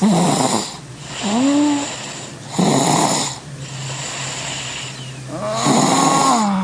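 Humphrey the Cat snoring in a steady rhythm of about five breaths, each snore carrying a reedy, whistling rise in pitch, over a constant low hum with no talking; a recording sent in by KIIS.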